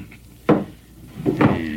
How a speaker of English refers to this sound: Better make sure the door's barred tight. Can't tell when someone is likely to come in without knocking.